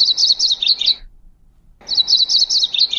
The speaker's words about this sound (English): The McGillivray's Warbler.